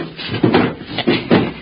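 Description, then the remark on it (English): Heavy wooden crates are shoved and dropped in a basement, giving three dull, low thumps with rough scraping between them, fairly loud against a quiet background with no talking. “You gotta move these crates first.”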